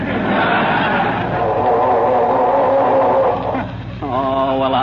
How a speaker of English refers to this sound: I'm trying to get this dad-ratted car started, if you must know.